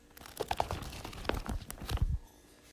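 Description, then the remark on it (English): Quick papery rustles and crinkles, a brief flurry of soft swishes as the pages of a book are flipped one after another, with no talking. “Flipping pages in a book.”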